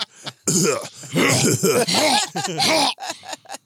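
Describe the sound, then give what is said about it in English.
A deep, rattling, hacking cough, performed by a voice imitating a man with tuberculosis: several harsh, gravelly bursts run together over a few seconds, loud, with no speech. “One of the things on it has to be a man like tuberculosis coughing his life out.”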